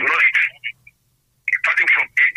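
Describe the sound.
Tinny, band-limited voice sound coming over a phone line, the caller's radio set feeding the broadcast back through the call as garbled echoing bursts with a short silent gap in between.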